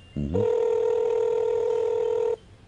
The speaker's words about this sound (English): There it is. It's ringing. Greg's phone is ringing.